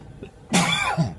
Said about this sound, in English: Had to cough.